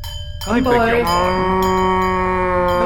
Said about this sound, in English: Are those cows?